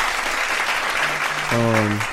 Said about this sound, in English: Round of applause to you guys.